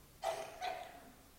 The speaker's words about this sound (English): Bless you.